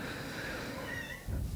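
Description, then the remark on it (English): A female cat lets out a long, drawn-out, agitated meow with a wavering pitch, heard on its own and followed by a brief low rumble near the end. “Your cat's freaking out, man.”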